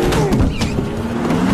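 A car engine hums loudly and steadily, its pitch shifting up and down as it revs, filling the short stretch with continuous motor noise and no voices.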